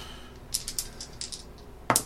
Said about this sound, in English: Roll the success dice. How many? One? Two. Oh, sorry, yeah, roll two.